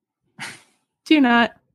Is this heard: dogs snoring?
yes